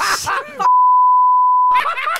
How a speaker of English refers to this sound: There is going to be a few little beeps that you hear throughout that,